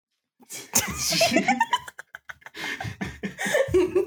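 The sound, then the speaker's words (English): A cat meows, a drawn-out, rising cry followed by a shorter second call a few seconds later, with some breathy rustling in between, as it runs towards the microphone. “My cat just meowed and ran towards the microphone.”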